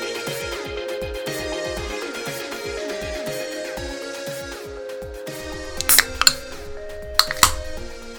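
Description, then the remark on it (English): A can of LaCroix black raspberry sparkling water cracks open with a couple of sharp metallic clicks and a brief fizzy hiss over steady background music. “I heard that soda. No, it's actually a sparkling water.”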